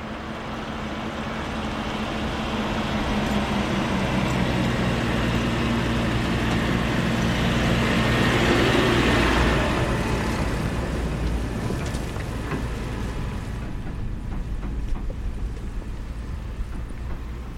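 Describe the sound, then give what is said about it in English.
A tractor engine rumbles outdoors on farmland with a steady low drone, growing louder as it approaches around the middle and then fading as it moves away across open ground. “And that's the sound of a tractor.”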